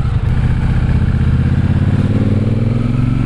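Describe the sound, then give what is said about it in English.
A cruiser motorcycle engine runs steadily while being ridden, a deep, loud, continuous rumble with a throbbing low-end pulse and no voices over it. “Love the sound of the engine.”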